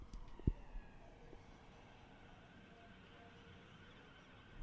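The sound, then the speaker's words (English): A faint emergency siren holds a steady wailing tone in the background, drifting slightly in pitch as it passes outside, with a brief thump near the start. “There goes a fucking siren.”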